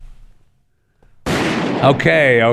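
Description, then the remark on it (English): Two gunshots in a video crack out about half a second apart after a quiet low rumble, the first an abrupt loud burst, both tangled with a loud, strained voice that carries on afterward. “And it was two shots, by the way. It wasn't just one.”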